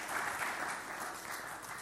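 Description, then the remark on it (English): A group at a church service applauds the Rainbows steadily, a dense, even wash of many hands clapping that holds at a moderate level from start to finish with no voices over it. “Round of applause and very much thank you for rainbows.”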